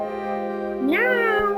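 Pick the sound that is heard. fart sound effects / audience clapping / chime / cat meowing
cat meowing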